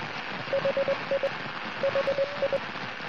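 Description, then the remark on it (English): Steady radio static hisses throughout, broken by two clusters of short, evenly spaced beeping tones, like a faint telemetry beacon pulsing through the noise: the signal of the Australis Oscar 5 satellite, Australia's first homegrown satellite, being tracked on 29.45. “And suddenly, out of the static, did it, and it was there.”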